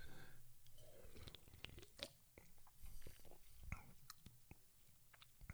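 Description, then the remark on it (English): A quick sip of a drink, heard as a quiet run of wet mouth clicks and a swallow, with no talking. “Real quick sip.”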